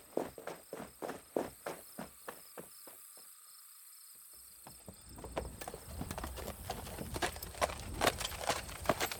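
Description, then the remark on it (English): Steady hoof clip-clops from a caravan of donkeys carrying full bags, drawing nearer: rhythmic sharp knocks that grow louder and denser, with a constant insect chirr in the background. “It looks like a caravan.”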